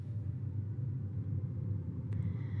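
Steady low engine rumble from inside a car creeping along in slow traffic on a highway in Texas, a continuous droning hum with a brief faint clink near the end.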